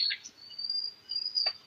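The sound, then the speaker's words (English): Birds chirping, a sustained high-pitched trill running throughout with a couple of sharper chirps breaking in near the start and end; no one is talking. “Sorry, these birds are really loud, dude.”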